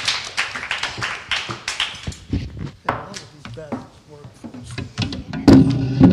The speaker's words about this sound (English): So without further ado, let's have a warm applause for